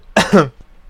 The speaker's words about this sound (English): I'm sorry for my coughing. I have no idea what that's coming from. It's going to scratch my throat. Pardon me.